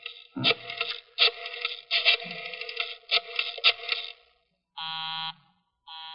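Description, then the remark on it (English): A harsh, buzzy telephone tone stutters in uneven bursts, then settles into a steady busy signal: a flat, mid-pitched buzz that switches on and off in short regular pulses, with no voices. “Busy? He's probably left the phone off the hook, Inspector.”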